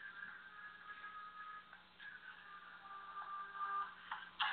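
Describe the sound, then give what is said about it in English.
A phone ringtone plays quietly for several seconds as a call comes in, a thin electronic melody of sustained tones that shift pitch now and then, with a faint hum underneath and no one talking. “I'm sorry, family, you know, we got a phone call coming in during the show.”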